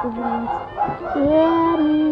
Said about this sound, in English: My dogs are barking like idiots. That is dogs barking like idiots. Dogs are complete idiots. That you can't hear me because my dog's barking.